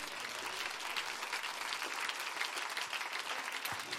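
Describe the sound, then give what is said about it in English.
An audience claps hands to the Lord steadily for several seconds, a dense, bright wash of many overlapping claps at an even, fairly loud level with no voices breaking through. “Come on, with expectation, can you clap those hands a little bit louder?”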